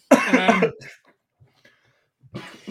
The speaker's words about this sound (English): Yeah, I went for a laugh, but a cough came out.